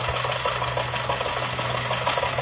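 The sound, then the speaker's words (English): A car engine runs steadily, giving off a constant low hum beneath a broad, even rumble that holds the same loudness throughout, as Jack Benny and Rochester set off by car early in the morning for the Hillcrest Country Club. “In fact, bright and early this morning, Jack and Rochester got in the car and started for the Hillcrest Country Club.”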